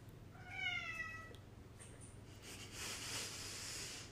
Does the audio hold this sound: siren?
no